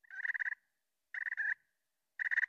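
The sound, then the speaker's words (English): Three short, rolling purrs from a turkey call, imitating the purr sound turkeys make, each a fluttering trill under half a second long, spaced evenly apart. Clear, with silence between them and no talking. “And then there are purrs.”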